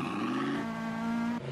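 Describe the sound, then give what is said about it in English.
A loud police sports car engine in Dubai drones with a steady, buzzing pitch, briefly dipping near the end before carrying on, alone with no voices. “By the way, those are all police cars.”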